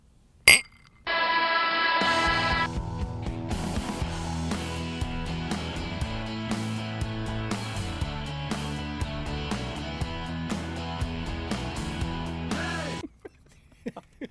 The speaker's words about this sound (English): Let's sound the celebratory clink.